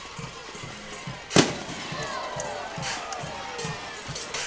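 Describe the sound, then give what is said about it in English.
A single sharp firework bang cracks out over a large outdoor crowd at a football game as the Ragland team runs onto the field, followed by a brief rumble as the steady crowd noise continues around it. “They lit a firework. There it goes.”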